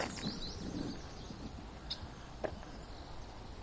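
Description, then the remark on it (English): Scattered bird chirps and calls from many hidden birds in a shallow marshland with tall grass, miles across, faint and intermittent over a steady breezy ambient hiss, with a couple of sharper short chirps standing out. “A lot of birds, but they're like hidden.”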